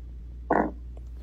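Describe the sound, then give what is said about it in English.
A short, buzzy fart sound in a student's recorded answer to a French question, bursting out of near silence, lasting about a fifth of a second, followed by the start of another loud burst right at the end. “It's not clear if the student typed in fart as her answer.”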